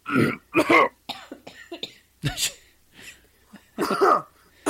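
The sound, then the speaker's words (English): Three sick people cough in quick succession, a burst of overlapping harsh coughs and throat clearing, some louder and some softer, spread across a few seconds with brief pauses. “Everyone starts coughing.”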